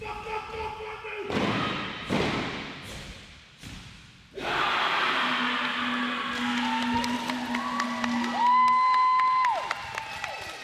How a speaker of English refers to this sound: There is a group of whaiers, aunties, kaumātua and tamariki who are there to watch every practice and cheer their team on. I got one of the whaiers' reactions at the end of one bracket.